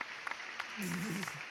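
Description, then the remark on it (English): A few faint, scattered hand claps ring out over a steady hiss of background noise, with a brief low vocal murmur partway through. “So we're going to clap it up for that.”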